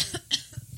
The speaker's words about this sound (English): Cough button. Excuse me.